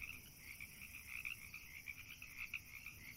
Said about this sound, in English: she listened to the frogs and the wind blowing through the long grass and cried.